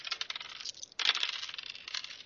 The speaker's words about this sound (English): Are those all the dice rolling down the stairs?